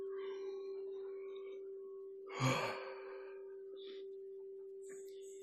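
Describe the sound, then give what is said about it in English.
A single breathy, drawn-out deliberate yawn, done as a mindful yawning exercise, rises briefly midway through, moderately loud, over a steady low hum with faint background noise and no talking. “Even listening to my yawn might make you spontaneously yawn, and you can fake it.”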